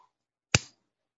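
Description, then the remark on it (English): A single sharp mechanical click from a Microtech mini UDT button lock knife snapping into place, crisp and bright with a brief fading tail, surrounded by near silence. “I hear it clicking.”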